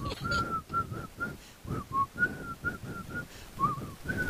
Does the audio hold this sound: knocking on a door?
no